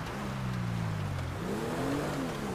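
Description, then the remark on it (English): A car engine in a video game drones loudly and steadily as the car drives in reverse on the Los Santos Freeway, its pitch dipping and then climbing again as it revs, with no voices over it. “Car driving in reverse, Los Santos Freeway.”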